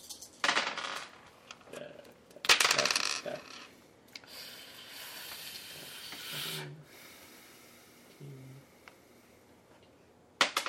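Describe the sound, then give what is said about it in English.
Four dice clatter and tumble across a hard tabletop in a few sharp rattling bursts, rolled for a pistol's damage in a game, with a softer stretch of rolling noise between them and no voices. “4 dice.”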